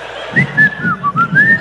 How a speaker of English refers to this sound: Your whistling is very cool.